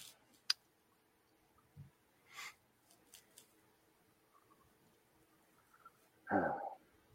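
Scattered, irregular keyboard clicks tapped out quietly at close range, with gaps between keystrokes and a louder clatter of keys near the end. No one speaks.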